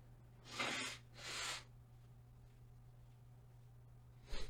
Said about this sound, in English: One second, I need to blow my nose.